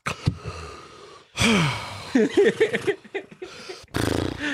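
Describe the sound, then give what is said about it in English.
A sharp, shocked gasp, Michael Scott's gasp from The Office on seeing Meredith, rushes in loudly, followed by strained vocal noises and a second breathy intake of air, unaccompanied by clear speech. “can we hear the Michael gasp seeing Meredith?”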